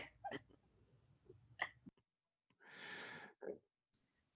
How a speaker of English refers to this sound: Sorry, I was coughing. Let me drink some.